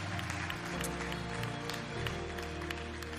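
A church audience claps steadily to welcome people into God's family and thank the pastor for the morning's message, a dense, continuous patter of many hands with sharp individual claps poking through, over a low sustained musical tone.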